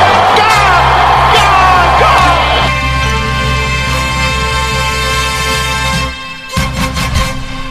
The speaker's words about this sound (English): Crowd cheers. Here's Siddle. He's got it! He's given him! Taylor Siddle's got a hat-trick on his birthday!